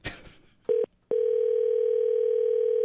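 An outgoing telephone call for a prank call rings on the line: a brief clunk, a short electronic tone, then a long steady ringing tone that stays loud until the end, with no one talking.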